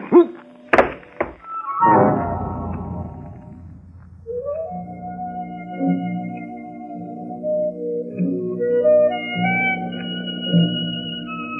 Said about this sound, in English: If you hit on the head hard enough, you get knocked out.